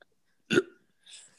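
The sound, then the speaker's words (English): A single short, abrupt burp, fairly loud, as a man tries to burp his way through a whole mock draft, followed a moment later by a fainter breathy exhale. No one speaks. “Can you burp a whole mock draft? He's about to try to.”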